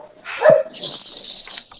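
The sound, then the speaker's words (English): A dog lets out one sharp, fairly loud bark, trailed by a faint hiss and scattered background noise, with no talking. “Yes, dogs, I know I did math wrong. You don't need to call me on.”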